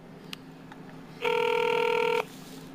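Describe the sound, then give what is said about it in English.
A single ringback tone sounds on an outgoing phone call to the Lee County School Bus Barn in East Fort Myers: one steady, buzzy electronic burst lasting about a second, heard through the line over a low background hum, with no one talking. “God, you know they don't want to answer the phone.”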